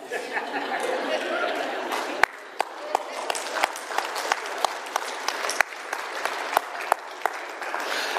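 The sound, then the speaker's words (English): An audience applauds steadily, dense clapping mixed with a low murmur of crowd chatter, with several sharper individual claps popping out above the wash throughout. “I pray that you're clapping because I got that off in one smooth motion.”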